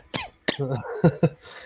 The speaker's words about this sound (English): Everybody call in sick. Go ahead and get that fake cough going there